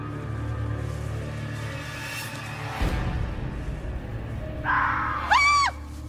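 A man lets out a sudden, shrill scream near the end, wavering and lasting about a second, loud and close over a busy, rumbling background with a brief crash-like burst earlier.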